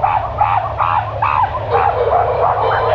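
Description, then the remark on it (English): Dogs bark in a rapid, continuous series of sharp yaps and woofs, fairly loud, with a steady low rumble underneath throughout. “We screamed, you know, the dogs, get the dogs in there. Get the dogs!”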